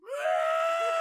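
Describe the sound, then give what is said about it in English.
A voice imitates a shrill, cartoonish scream: one sustained high-pitched wail that rises quickly and holds steady, loud, with no other sounds around it. “All I hear is a SpongeBob scream.”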